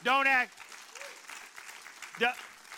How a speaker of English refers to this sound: Oh, I need somebody to applaud in this church.